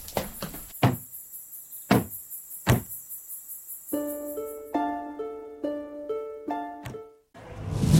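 Several heavy, booming thuds strike a door at uneven intervals as someone batters it to break it in, then a melodic musical passage takes over with no one speaking.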